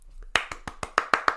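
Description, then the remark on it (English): A short burst of applause: about eight sharp, crisp claps in a quick, steady rhythm, moderately loud, with no talking alongside. “And now he's gotten a round of applause.”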